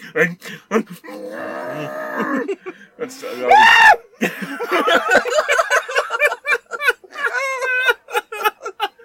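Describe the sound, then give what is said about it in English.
A muffled, strained vocal wail rises into a high, stifled scream around the middle, someone screaming with a mouth full of food, framed by excited chatter and laughter. “The grief is so deep it can only be expressed through screaming with your mouth full.”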